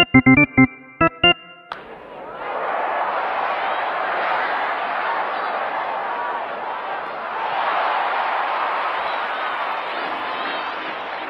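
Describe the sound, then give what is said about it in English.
A few short, sharp tonal blasts open, then a baseball crowd erupts into a sustained roar of cheering for a home run, swelling a second time partway through and staying loud to the end. “In fact, I think that second upswing on the cheer was because that ball was out of there.”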